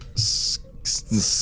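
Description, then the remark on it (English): Someone imitates a snake's hiss with their voice: three loud, breathy sibilant bursts, the first long, then a short one, then another long one, each carrying a slight voiced edge. “I can't even do a snake. It's a hard one.”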